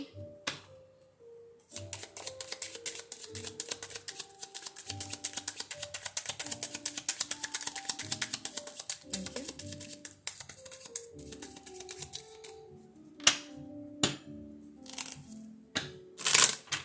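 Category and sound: household object, tarot cards being shuffled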